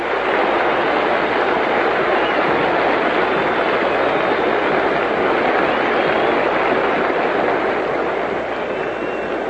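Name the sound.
ballpark crowd applause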